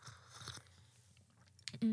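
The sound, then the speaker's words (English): Crunchy chewing of a dipped biscuit, a few brittle bursts in the first half-second, then a quiet pause before a sudden loud, harsh burst at the very end. “After Marudori, it has a better taste and a better crunch.”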